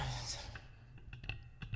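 Several sharp clicks from a microphone being clicked, coming in an irregular scatter over a soft, low background hum.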